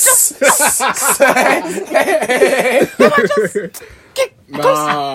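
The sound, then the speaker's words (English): A voice makes a couple of sharp, breathy hisses, imitating an angry swan, then breaks into animated talk with chuckling and a short laugh at the end. “That swan, yeah, was hissing. Just whiss.”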